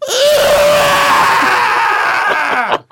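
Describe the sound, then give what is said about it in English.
A loud, sustained shriek fills nearly three seconds, harsh and piercing, wavering slightly before breaking off into a couple of short, gasping bursts at the end. No talking alongside it. “It slowly opened its mouth and screamed.”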